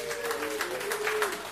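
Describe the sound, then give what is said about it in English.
An audience claps in a steady, dense burst of applause lasting a second or two, with a faint sustained voice or whoop carrying underneath, clapping if they know where the Jungles, a part of the hood, are. “Clap it up if you know where the Jungles are.”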